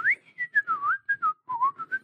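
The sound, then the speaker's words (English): A loud mouth whistle runs through a quick melodic phrase of short gliding notes, rising and dipping in pitch with brief gaps between them. “I can do normal whistles pretty loud.”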